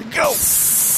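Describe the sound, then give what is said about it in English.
A voice shouts briefly, then a loud, steady rush of spraying, splashing water starts up and keeps hissing without a break to the end. “Oh, I'm gonna splash it just at the right angle.”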